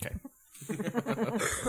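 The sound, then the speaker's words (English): A raspy, throaty cough from Ron Howard in a played recording breaks out in a quick series of rough bursts after a brief pause, moderately loud, like a heavy smoker's hacking cough. “He's got a bit of a cough on him there. He sounds like he has that smoker cough.”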